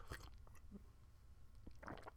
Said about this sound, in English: So a little sip of the coffee.